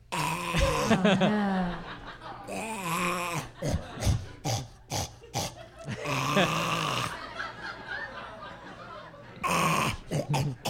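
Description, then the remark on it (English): A person imitates a pug's snuffly grunts and snorts, a fairly loud run of nasal wheezes and throaty huffs lasting several seconds, with brief pauses between bursts, as the pug walked around with a scratched eye. “To be fair, like, not that different from how that dog normally acts. that's the normal sound that it makes.”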